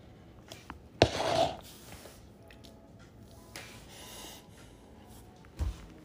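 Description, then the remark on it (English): Two abrupt, sharp hiccups several seconds apart, each a sudden gulping catch of breath, fairly loud against a quiet, faintly noisy background. “How you supposed to get rid of hiccups?”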